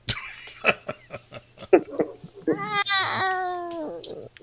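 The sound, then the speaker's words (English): A person imitates a cat with a drawn-out, whiny meow that rises and then falls, coming after a few short clicks and breathy bursts. Fairly loud. “We're back to the cat calls.”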